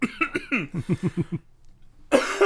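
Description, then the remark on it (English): A loud fit of rapid, rhythmic coughs from a person with a sinus infection, about eight in quick succession, then a brief quiet pause before one more harsh, raspy cough bursts out. “So, I apologize to all of our listeners that for the first couple episodes, you're going to hear me cough and cough because I have a sinus infection, so.”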